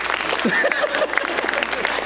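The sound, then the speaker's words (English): An audience claps steadily in a dense, continuous patter of many hands, fairly loud and even, with faint voices mixed into the applause. “Let's pray. Or clap.”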